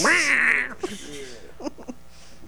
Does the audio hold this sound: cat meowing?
yes